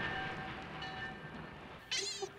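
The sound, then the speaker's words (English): A northbound train with a refrigerated boxcar rumbles steadily along the tracks with faint sustained tones above the low roar, then a sharp, high-pitched squeal cuts in briefly near the end. No one speaks. “A refrigerated boxcar and a train headed north?”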